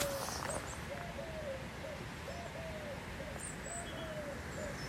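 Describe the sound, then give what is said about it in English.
A bird calls in winter snow, in a steady series of short, soft tonal notes, repeating through the whole stretch over a constant wash of outdoor background noise, no voices present. “There you go, I haven't heard that call for a long time.”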